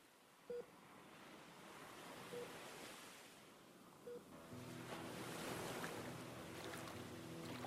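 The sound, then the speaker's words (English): Steady ocean surf rolls and washes onto the shore as people splash through the waves, a broad hissing rush that swells louder in the second half, with a few short high chirps and a low hum underneath. “Water washing over feet, splashing through the wave, followed by another pair, Sue and Hugo, dash into the ocean, diving into oncoming waves.”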